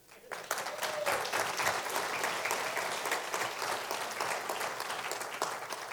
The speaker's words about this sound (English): Applauding Cindy because she's held up so long and so well.